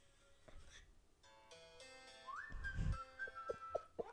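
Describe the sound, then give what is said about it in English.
Someone tries to whistle: a rush of breathy air gives way to a thin, wavering whistle tone that holds for about two seconds, with a few soft clicks near the end. “I wish I could whistle.”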